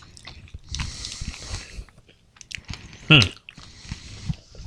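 Crunchy chewing of hard nuts with irregular bites and grinding, punctuated by a louder crunch midway, with faint background noise.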